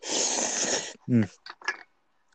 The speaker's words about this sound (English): I'm just getting another slurp in here. It's going to sound pretty cool.